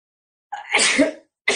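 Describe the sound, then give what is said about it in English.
A loud sneeze bursts out with a breathy buildup and a harsh, noisy release. A second similar burst begins just as it ends, with no talking. “So pardon me, I'm going to sneeze.”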